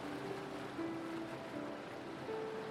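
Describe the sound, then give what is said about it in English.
Steady ocean surf washes continuously at a soft, even level, with gentle rumbling water and faint sustained tones drifting over it, no voices present. “Blissful Deep Relaxation & Inner Peace | Guided Meditation, Stress-Relief, Ocean”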